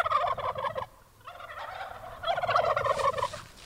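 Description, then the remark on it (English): Heritage turkeys gobble on a family farm in Massachusetts in rapid, warbling bursts, with a loud burst at the start, a short pause, then more overlapping gobbles from a flock, over a low rumble of background noise. “Behind her mustard-colored farmhouse, small fields bordered by stone walls are dotted with sheep and turkeys.”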